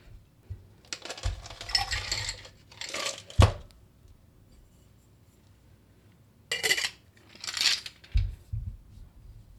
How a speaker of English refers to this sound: Let's go ahead and shake this cocktail.